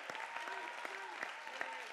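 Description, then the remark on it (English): A church audience claps hands together to give God praise, in a dense, steady stream of overlapping claps with a few sharper individual hits, moderately loud, while faint voices or sustained tones hum underneath. “Let's go ahead and clap our hands and give God the praise.”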